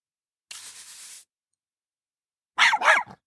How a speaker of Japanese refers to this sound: あ、犬です。かわいい犬ですね。犬はお腹が空いています。